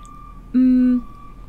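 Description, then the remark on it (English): A single loud, steady electronic beep of a recycling truck's reversing alarm sounds outside for about half a second over faint background noise, with no talking, as the truck backs up back and forth with its lights on. “You hear how it's beeping out there, by the way?”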